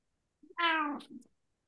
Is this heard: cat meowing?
yes